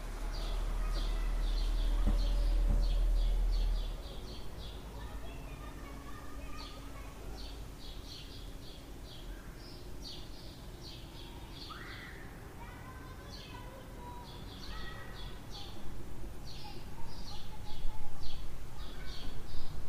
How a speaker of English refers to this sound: You can hear the harmony of the birds chirping, and it has a beautiful, powerful effect on us. So enjoy.